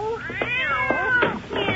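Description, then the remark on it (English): Several cats yowl and meow over one another in a loud, close, continuous chorus of rising and falling wails, with no talking. “Have a seat and relax, if you don't mind the cats.”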